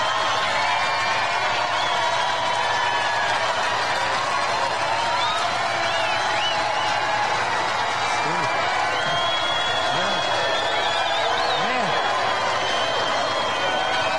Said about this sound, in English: And then the crowd breaks out into chants of "We love you," which I'm glad, you know, I'm glad to see that.